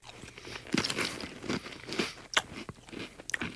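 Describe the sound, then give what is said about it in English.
Wet crunching and chewing of salty, cheesy Goldfish crackers soaked in milk, eaten as a breakfast cereal, with irregular bites and squelchy mouth noises and no talking. “It's salty, cheesy goldfish with milk as a breakfast cereal.”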